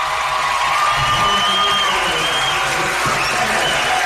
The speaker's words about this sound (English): Getting a great hand again from the Jacksonville crowd, and a big hug from Coach Smith.